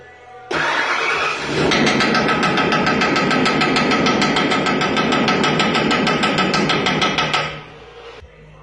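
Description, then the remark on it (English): A truck engine under repair roars with a rapid, harsh metallic knocking and clatter, made by a mechanic to sound like a major engine problem, for about seven seconds before cutting off abruptly. “Check out this video of a mechanic having fun with a coworker repairing a truck by making it sound like there's a major engine problem, and then listen for the reaction from the driver at the end of the video.”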